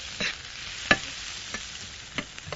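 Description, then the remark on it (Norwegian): Onions, with a little salt added, sizzle steadily in a pan for an Indian dish while a utensil stirs them, giving five or so scraping clacks at uneven intervals, one noticeably sharper than the rest. No one speaks. “For at jeg skal få løken til å bli myk veldig, veldig raskt, så tilsetter jeg litt salt, for salt tar ut all vann som er i løken.”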